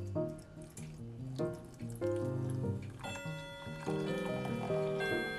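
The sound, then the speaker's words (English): Liquid pouring steadily into a bowl, with a ringing, tonal gurgle whose pitch shifts as it fills, continuous for several seconds with no talking. “Let's just pour that in the bowl.”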